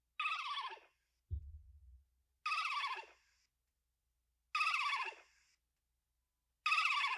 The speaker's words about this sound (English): So that is unfortunately a sound from Star Wars. That is one of the creatures inhabiting Yoda Swamp in Dagobah.